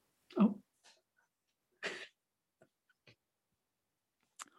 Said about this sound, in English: Sucked in some wind and had to cough.